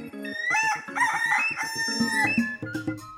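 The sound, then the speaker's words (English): A rooster crows loudly and close up, its harsh, strained calls running together with choppy clucking over about three seconds, with no talking. “Rooster Punzel and the bald eagle quarreled and quibbled with each other at first.”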